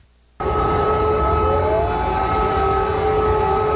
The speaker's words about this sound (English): CNN was doing coverage on Ukraine, and there was air raid sirens that were going on